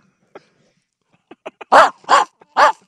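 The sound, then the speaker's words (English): A person in a radio studio imitates a dog barking: a few soft clicking yips lead into three loud, evenly spaced, forceful barks, with no other talk. “Oh no, dog's barking!”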